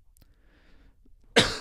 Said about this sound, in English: Excuse the coughing. Still recovering. Still recovering.